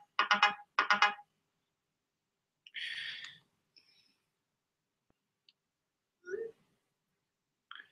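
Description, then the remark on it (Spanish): A phone ringtone rings out in two quick, bright electronic bursts, followed by a buzzier trill and a few faint scattered beeps and blips, with no one speaking. “Voy a poner a apagar los teléfonos acá.”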